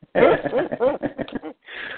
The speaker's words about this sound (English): at the exact same moment, my dog, Kopi, is whining and wants to jump up on my lap, so I'm encouraging him to jump up onto the seat beside me.